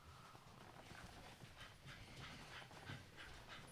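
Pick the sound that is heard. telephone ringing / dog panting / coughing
dog panting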